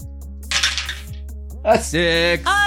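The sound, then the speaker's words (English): A brief clatter of dice, including a six-sided D6, tumbling across a hard tabletop, a quick rattling burst, followed by a voice speaking. “And I'll take one D6 from the hype pool.”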